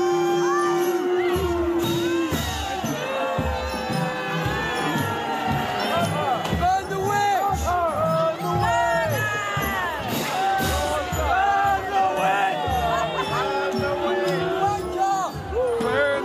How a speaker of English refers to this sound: Are they yelling, burn the witch? Burn the witch! That's crazy, man.